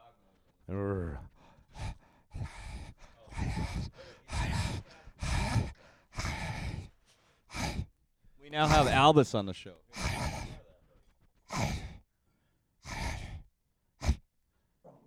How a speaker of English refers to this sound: Oh, I actually made him growl. Oh, hey, sorry there, buddy. Oh, that's okay, buddy. Was that a good growl or a bad growl? He's just messing with you.